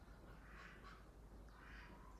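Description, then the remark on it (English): Ducks outside an open window quack faintly, two short bursts of nasal calls over a steady low background hum, with no one speaking. “Sorry, I'm living my life by hearing these ducks out the window.”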